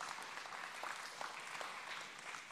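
An audience claps steadily throughout, a dense, even patter of many hands with no voices over it and no pause in the sound.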